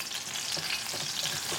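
A pan of chicken cutlets fries in oil with a steady, dense hiss and crackle, while a few soft rhythmic scrapes and swishes mark the pan being swirled and shaken back and forth so the oil bubbles up over the cutlets. No one speaks.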